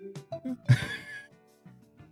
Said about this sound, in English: Can I just cough?